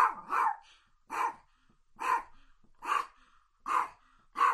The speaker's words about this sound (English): And let's see if this year we can get Paco to bark for us. Paco, you want to bark?